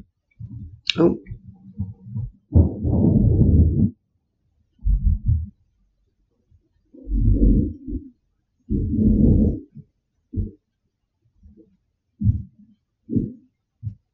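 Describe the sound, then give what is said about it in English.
Thunder from a thunderstorm with lightning rolls in a series of deep, low rumbles and thuds, several heavy bursts lasting a second or so each, separated by short quiet gaps, with no talking over them. “Not a word of a lie, if you heard that, I'm in a thunderstorm.”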